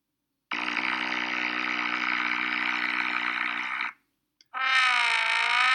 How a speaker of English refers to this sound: Okay, so this was a sound as the guy was on the water ski, a little bit of mist around, and the foghorn was leading the way for him.